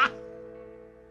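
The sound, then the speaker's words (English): A single drawn-out cow moo, played as a new sound effect for the Big Show, starting with a sharp burst and holding a steady, droning tone for about a second. “Randy, put together a brand new Big Show cow.”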